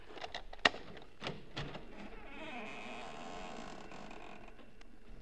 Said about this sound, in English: Well, we've opened the front door now. Maybe you heard the hinge squeak a little. Now we're standing here looking in.